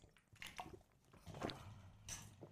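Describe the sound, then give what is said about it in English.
A few soft, wet sipping and slurping sounds of water being drunk between cake tastings, spaced out over a couple of seconds, with faint liquid squishes and no talking. “Doing a little water here in between each one.”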